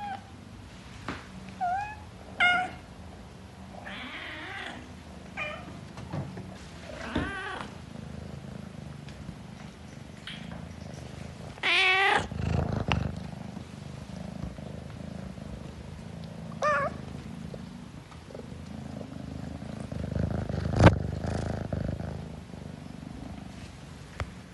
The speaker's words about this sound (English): But until then, I will leave you with the exemplary sounds of my very talkative kitten babies. Because I am that cat mum.